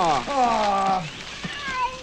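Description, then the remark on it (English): A cat lets out a long, drawn-out meow that slides downward in pitch, then a quieter, shorter mew follows. Both are clear, with no talking. “Hey, cat!”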